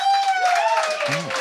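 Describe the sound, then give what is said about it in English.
A debate audience claps to show they are undecided, a dense, loud patter of many hands for a second and a half with no break, and a brief voiced sound rises over it near the end. “And finally, clap if you're undecided.”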